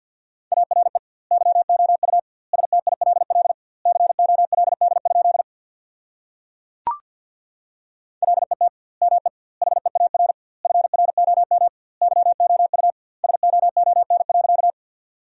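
Rapid Morse code at about 50 words per minute with double word spacing, sending sentences built from the 400 most common words: a steady mid-pitched tone keyed into quick bursts of dots and dashes, with a sharp click and brief pause midway before the keying resumes.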